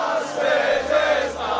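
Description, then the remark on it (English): Thousands of Italian national soccer team supporters on Lygon Street in Melbourne, Australia, cheer and chant together, celebrating Italy's European Championship win over England on a penalty shootout: a loud, sustained roar of many voices rising and swelling in waves with no single voice standing out. “Lygon Street in Melbourne was packed with thousands of fans cheering Italy's win over England, which came down to a penalty shootout.”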